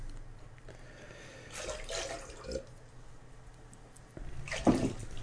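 Water splashes as it is poured from a pitcher into glasses in two short bursts, the second one louder, with a quiet hum in the gaps and no voices.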